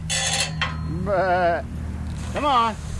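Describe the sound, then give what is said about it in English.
White-faced sheep, a breed prized for pure white wool, bleat twice on a small acreage just south of Ponca City, Oklahoma. Each is a loud, wavering, quavering cry, the second after a short pause, over a steady low hum with a burst of scuffling noise at the start. “John Hoke runs a herd of white-faced sheep, a breed prized for pure white wool”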